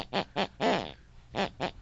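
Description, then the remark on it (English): A sleeping mother's throaty snores rise and fall in the tune of a song she listened to before bed: two short honking bursts, a longer drawn-out one, a brief pause, then two more matching bursts, with no talking. “Whatever my mother listens to before she goes to bed picks and pulls on her unconscious mind, and that's the very tune she snores.”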